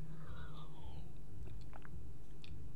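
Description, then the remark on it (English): The plastic cap of a Voss water bottle twists open with a short squeak, then a few soft, wet sipping sounds follow, fairly quiet, with no one talking. “Without further ado, let me crack and open my water, my Voss water.”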